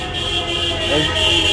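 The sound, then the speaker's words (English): Car horns blare outside in a sustained, overlapping honk that runs the whole moment, moderately loud over a steady rumble of street traffic. “People either honking because they're celebrating, or they're honking at Jen for being a Jets fan.”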